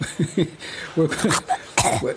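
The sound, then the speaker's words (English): A voice imitates coughing up a furball with a run of short, throaty hacking and retching bursts, fairly loud, ending in a harsher, breathy hack. “We fed it, and it coughed something up.”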